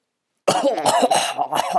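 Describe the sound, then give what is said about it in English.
After a brief silence, a loud fit of harsh coughing from a man on a telephone line breaks out, several raspy bursts in quick succession mixed with throaty clearing sounds. “The voice on the line began a coughing fit.”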